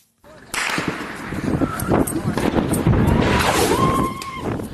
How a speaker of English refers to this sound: Gunfire near the government seat in Bissau, forcing bystanders to seek shelter.